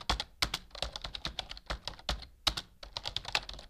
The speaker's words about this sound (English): she heard the sound of a keyboard furiously typing.